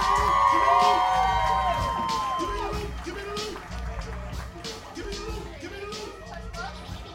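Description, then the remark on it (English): A loud audience cheers and applauds the finalists of the You Look Like contest, with high whoops and shouts rising over a dense wash of clapping that stays steady before gradually easing slightly. “Everyone, put your hands together. One good, loud time.”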